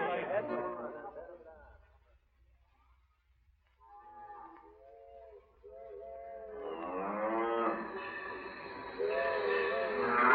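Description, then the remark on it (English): A cattle herd blocking the railway right of way to the station, holding up the Wyoming special train, lows in long, drawn-out calls, a few scattered moos at first, then many overlapping voices swelling into a loud, continuous chorus. “Say, the Wyoming special can't get through to the station on account of them cattle blocking the right of way.”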